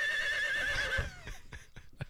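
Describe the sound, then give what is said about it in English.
A horse neighs loudly in a shaky, wavering whinny lasting about a second, followed by a few sharp clip-clop hoof strikes spaced out at a steady pace. “I have multiple horse noises.”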